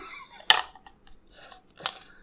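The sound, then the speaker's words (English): Dice spill out of an opened drawer and scatter in every direction, two sharp, bright clattering bursts about a second apart with a few faint ticks between them, with no voices. “it was my thing of dice. Uh-huh. The thing... What'd you get? Well, all the dice went in every single direction, so I can't quite...”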